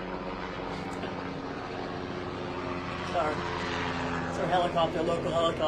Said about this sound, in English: Our local helicopter goes over the house every 10 minutes.